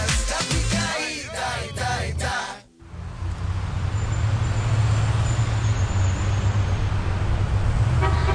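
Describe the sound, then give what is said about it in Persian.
A car horn honks several times in a quick, loud burst, then stops abruptly and gives way to a steady rumble of street traffic and an idling engine. “هر کی گفت آفری، شامپانزه ساعت 5 صبح تو کوچه بوق نمیزنه.”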